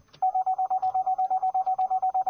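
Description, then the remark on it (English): A car put into reverse sounds its reversing warning, a rapid, steady series of identical high-pitched beeps, about seven per second, fairly loud and on its own with no talking. “Look, I'll just put it in reverse right now, it'll start beeping.”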